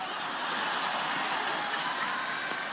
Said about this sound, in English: Why are you clapping? What is that about?